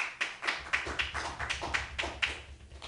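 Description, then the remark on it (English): Audience applause in answer to being asked who is excited for Star Wars comes through as a steady run of sharp, evenly spaced claps, about four per second, over a low background hum, with no one talking. “That's a good way to get applause.”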